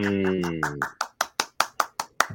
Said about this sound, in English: I'm not clapping for that yet. You gotta clap for ….